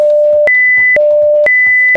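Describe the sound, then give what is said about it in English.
Steady censor beep tones alternate between a lower and a higher pitch, each lasting about half a second, with sharp clicks at every switch. Faint, muffled sounds sit underneath the beeps. “So what we're going to do right now is we're going to beep it out.”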